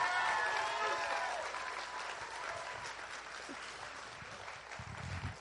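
Steady audience applause, a dense wash of many hands clapping that starts loud and gradually fades a little over several seconds, with a few scattered cheers mixed in.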